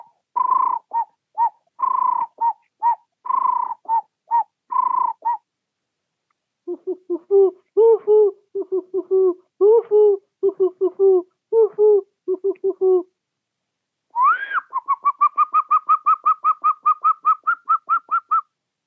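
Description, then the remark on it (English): A person's voice imitates Tanzanian bird calls in three runs: a quick series of chirpy notes, then lower hooting coos, and finally a rising whistle into a fast, steady trill. The calls are clear. “Before say bye-bye for you, maybe I will just make you a few communicating birds call.”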